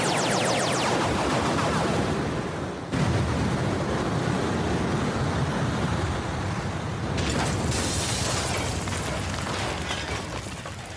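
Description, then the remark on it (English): A loud, relentless barrage of rapid-fire energy blasts from dozens of starships firing into the Hollow Earth merges into a continuous roar of rumbling explosions. The sound is dense, with sudden shifts in intensity and no voices. “The combined might of dozens of starships just poured all of their firepower into the Hollow Earth, wiping out all of the reptoids.”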